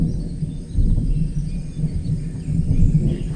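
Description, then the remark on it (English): Distant thunder from a thunderstorm, heard one evening at a camp, rolls in a low, continuous rumble that swells and ebbs over a few seconds, heavy in the bass, with faint faraway chirps in the background and no voices. “we heard some strange sound in the distance, and Tuzo, the commander, he stood up and said, but then it turned out to be just a thunderstorm”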